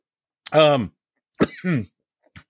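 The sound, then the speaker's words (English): Two harsh, throaty coughs from a person still fighting a COVID cough, the first drawn out and voiced, the second sharper with a rough tail, followed by a faint short rasp. “sorry, still fighting the COVID cough.”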